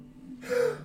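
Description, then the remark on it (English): A single sharp sneeze, a brief breathy burst that rises abruptly after a quiet moment and fades within half a second, with no talking. “Bless you.”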